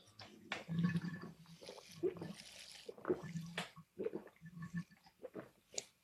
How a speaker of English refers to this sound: Birthday Bravo beer bong? Well, here we go.